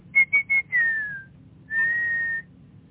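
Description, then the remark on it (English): A person whistles a short phrase mimicking a bird's song: three quick clipped notes, a longer note gliding slightly downward, a pause, then a sustained steady tone, clear with a faint low hum beneath. “And so I tried using the bird's tonal flexibility and whistle the fifth note a half step plus a quarter tone higher.”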